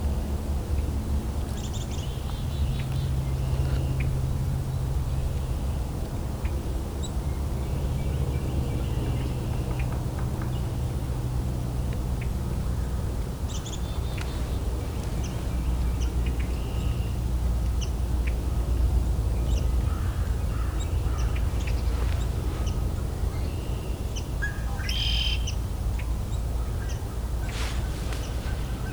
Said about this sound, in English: Yeah, this got a few song sparrows singing here. Red wings.